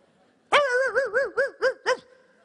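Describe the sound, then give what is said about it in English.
Audience voices imitate several dogs barking, starting with a long drawn-out woof and then a quick string of five or six short, wavering barks, loud with no other sounds. “Now several dogs, help me. Woo, woo, woo, woo, woo.”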